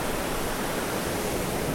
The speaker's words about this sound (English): So now I'm in the middle of some rocks. I'm actually in the ocean. This is amazing.